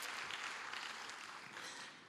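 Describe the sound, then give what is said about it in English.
An audience applauds together as a clap offering to God after a prayer, a dense, sustained wash of many hands clapping at once that fills the room steadily and tapers off slightly at the end, with no voices rising above it. “Let's give God a good clap offering.”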